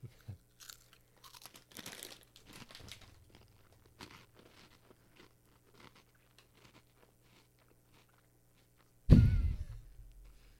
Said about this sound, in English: Not bad. You're like crunching it, it's sweet, and then once you actually decide to swallow it is when it hits you. On the way down.